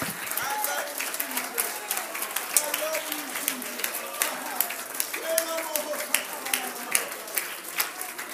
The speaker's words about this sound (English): Let's clap our hands, can we, to the Lord.